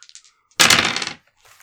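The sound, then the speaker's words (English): A few light clicks, then a loud, bright clatter of special stat-rolling six-sided dice, rolled for damage, tumbling across a hard surface for about half a second before settling, with no voices. “These are my stat rolling d6s.”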